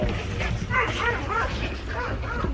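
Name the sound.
dogs barking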